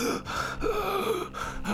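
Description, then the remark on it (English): A voice imitates a character kneeling up and gasping for air in tortured pain, a run of ragged, breathy inhalations and strained exhalations, fairly loud, with no words spoken. “So Paige kneels up and starts gasping for air, and you can see tortured pain in her eyes, and she's like...”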